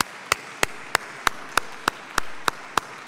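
Applause for a speaker after a talk, in a slow, steady rhythm: about ten sharp, crisp claps evenly spaced roughly a third of a second apart over a constant soft hiss, with no voices.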